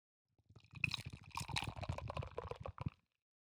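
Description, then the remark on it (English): Beer pours into a glass in one steady, gurgling stream lasting about two and a half seconds, fairly soft, with fizzy splashing throughout and no voices. “If you are at a bar, let me just pour this in.”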